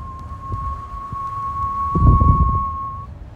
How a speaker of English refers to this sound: And I love, you know, transcendental whistling too, you know, like.